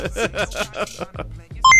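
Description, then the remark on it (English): Voices talk briefly, then a short, loud electronic beep cuts in at the very end: a steady, high-pitched computer-style tone as a calculating computer is activated. “Calculating computer activated. Computers. Beeps.”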